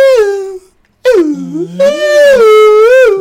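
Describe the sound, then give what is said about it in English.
A voice imitates a ghostly howl: a short falling wail, a brief pause, then a longer, loud, wavering moan that dips low and swoops back up, held steady and tremulous. “Did I sound like a ghost?”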